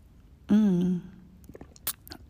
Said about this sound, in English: Excuse me, let me take a sip of my hot chocolate.